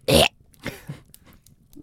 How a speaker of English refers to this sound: I'm going to burp in 3, 2, 1.